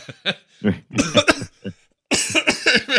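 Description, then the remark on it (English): A person chokes after a joke and has a coughing fit: a string of harsh, sputtering coughs, a brief pause, then a louder, more frantic burst of hacking. “I choke on my own self”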